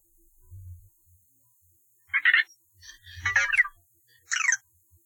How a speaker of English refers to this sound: Anyway, well, so he was speaking in a droid language, or what he was speaking? He was making a little beeping noise.